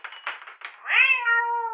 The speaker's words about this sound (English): my cat! Oh, yeah, your cat, sorry.